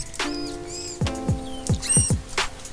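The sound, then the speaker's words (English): Manatee vocalizations: a series of high, harmonic squeaks and short chirps, some with quick downward sweeps, repeating irregularly at moderate loudness with no talking. “They're vocal creatures that make several interesting sounds.”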